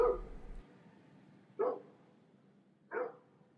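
A dog, Shelley, barks three times as she dashes away at night: single sharp woofs spaced about a second and a half apart, moderately loud, with no voices around them.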